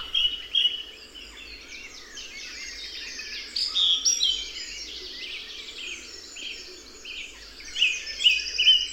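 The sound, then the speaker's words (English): A dense dawn chorus of songbirds in a burial ground, song thrush and blackbird phrases weaving together in a continuous, layered tangle of bright whistles and trills, with no talking. “Dawn chorus in a burial ground”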